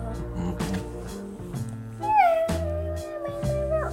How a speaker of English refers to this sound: She meows at doors. She meows at doors.